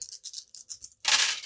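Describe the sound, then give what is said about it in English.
Dice are rolled for a wits roll in a game, rattling in a series of quick, bright clicking bursts, then spilling into a louder, sustained clatter as they tumble out. No voices are heard. “give me a wits roll. So, 3? 4. 4. Add one more dice for your thief.”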